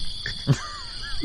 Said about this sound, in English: Well, is there any game on this list this week you'll buy? Any of you? It's a cheapos. What's that I hear? Crickets?